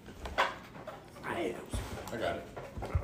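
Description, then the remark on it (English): A dog whines and whimpers in rising and falling tones, with a few short, sharp bark-like bursts and some panting mixed in. “Yo, don't kill my dog, bro. He can handle it.”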